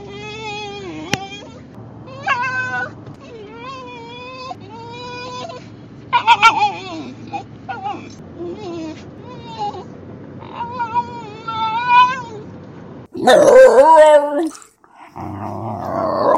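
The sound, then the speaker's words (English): A Spitz-type hound dog that does not bark yodels, a string of warbling calls whose pitch slides up and down, ending with a louder, rougher burst of yowling. “It's not even a bay or a howl. Some people have described it kind of like a yodel.”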